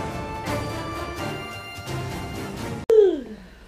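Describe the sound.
A voice imitates a Chewbacca yawn: one loud, drawn-out moan that slides downward in pitch for about half a second. It comes after a sharp click, which cuts off a steady musical bed.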